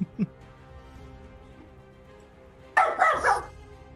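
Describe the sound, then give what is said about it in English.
A dog barks loudly at someone outside the door, a quick cluster of two or three sharp barks near the end, after a brief faint yelp early on over a quiet, low background hum. “Dog agrees. Dog. Get him. Much bark.”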